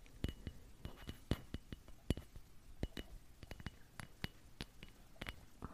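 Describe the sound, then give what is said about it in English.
Christmas bells jingle in a quiet, irregular patter of bright, sharp clinks, each strike short and crisp, with uneven gaps between them and no voices. “I'll just never get over the sound of Christmas bells.”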